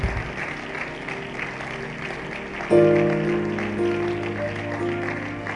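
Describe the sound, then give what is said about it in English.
An audience claps steadily in a dense, continuous patter, giving a hand clap to the Lord at an evening service. Partway through, loud sustained musical chords come in and ring out over the ongoing applause. “Oh, give the Lord a better hand clap this evening.”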